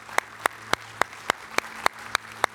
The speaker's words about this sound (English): And then now, one last time, could we all across the sanctuary today simply put our hands together and give God a great applause for His grace that reaches to us? Come on, everybody.